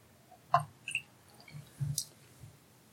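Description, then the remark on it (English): Two or three small drips of water plink into a glass of whiskey, soft, spaced unevenly over a couple of seconds with quiet pauses between, no talking. “Okay, we're adding a little bit of water. Like, literally, like, 2 or 3 drops.”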